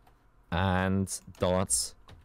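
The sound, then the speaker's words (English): A voice mimics keyboard typing while pretending to type a link: two loud, buzzy vocal bursts, each followed by a short, hissy click, rather than real keys being struck. “That's the fakest typing sound I've ever heard.”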